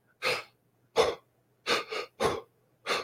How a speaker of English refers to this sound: They had us do this breathing exercise. Basically, it's two breaths in and one breath out. It's like you're laying down and you're breathing into your abdomen. So you're breathing.